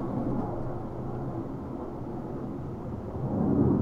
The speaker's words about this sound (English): Well, I'm going to let your jet engine pass, I suppose. Yeah, I don't know what's going on with that. What is happening? It sounds very loud is what it sounds like. It's still going.